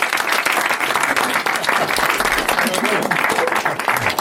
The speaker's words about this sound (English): please give a massive round of applause for the amazing Jeff Maisie.